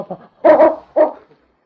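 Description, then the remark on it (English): A dog, King, barks three times in a short burst: a faint quick yap followed by two louder, deeper woofs, with a brief pause before the last one. No one speaks. “Maybe King can pick up a trail, Sergeant.”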